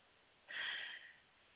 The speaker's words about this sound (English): I want you to take notice of what it is that you may see, what it is that you may feel as we keep breathing in through our nose and breathing out with our mouth.